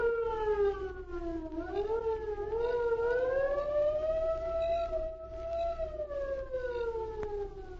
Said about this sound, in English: There they waited until the distant air raid siren sounded.